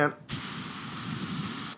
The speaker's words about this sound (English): Sorry, I just had to spray out a cockroach over there.